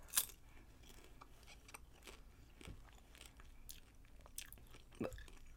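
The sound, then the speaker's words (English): Soft chewing of a spicy, red-tinted popcorn-like snack with a lime flavour, with irregular quiet smacking and faint moist clicks over a few seconds. A couple of sharper bites stand out, and nobody speaks. “So let's just try one out. It's not very crunchy. It's kind of soft.”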